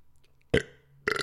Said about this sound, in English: After I burp